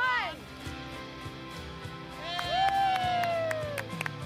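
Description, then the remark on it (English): Sparse, scattered claps from a handful of people ring out irregularly, while drawn-out vocal calls and cheers rise and fall over them. “You're right, it does sound like there's four people.”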